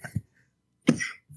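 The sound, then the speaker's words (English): A single sharp, clear cough picked up by a new microphone, with a harsh burst of noise lasting a fraction of a second, preceded by a faint short throat sound and quiet pauses. “that cough was super clear.”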